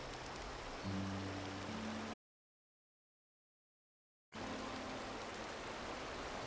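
waterfall

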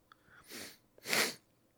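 sniffling

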